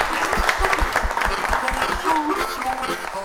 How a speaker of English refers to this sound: A big round of applause to our volunteers tonight who helped make the event happen as well.